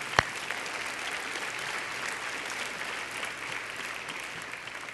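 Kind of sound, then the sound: crowd, audience applause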